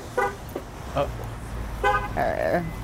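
A few short, bright car horn chirps from a car being locked sound at uneven intervals, each brief, over a low steady background rumble.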